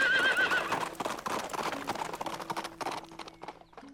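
An old horse lets out a loud, quavering whinny right at the start, then gives way to a busy clatter of hooves and rustling movement, with no one speaking.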